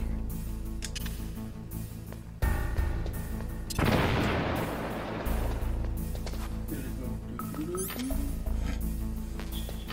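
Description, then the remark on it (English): Grenade explosions: a sudden thump followed about a second later by a louder, crackling blast that rumbles and fades, over a steady low droning background with scattered clicks. “Some more grenades.”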